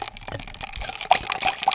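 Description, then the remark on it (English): Liquid sloshes and trickles in a glass of a mixed drink made of several kinds of liquor and a little peach-flavored sparkling water, with small splashy bursts and a few bright droplet-like plinks over a soft, continuous watery hiss. “It's got a whole bunch of different kinds of liquor in there and a little bit of my sparkling water because it's peach flavored.”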